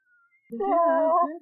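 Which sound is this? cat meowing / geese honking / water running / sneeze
cat meowing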